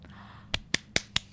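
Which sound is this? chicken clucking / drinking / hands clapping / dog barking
hands clapping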